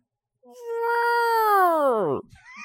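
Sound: person imitating an elephant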